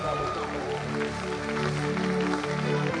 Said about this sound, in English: Somebody give the Lord a clap up and a shout of praise.